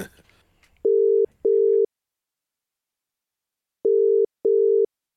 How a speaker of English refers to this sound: Unfortunately, as we're all fully aware and we've been exchanging stories, there aren't many Blockbuster Videos left, which is why now we make an international phone call to Bend in Oregon in the US of A. Hopefully.